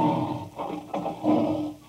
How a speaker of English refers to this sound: It's funny, I could swear that sounded like a lion. A lion.